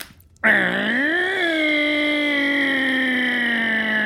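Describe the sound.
A voice imitates a chainsaw: after a brief silence a loud, buzzy drone kicks in, rises in pitch, then holds a steady rasping hum for several seconds.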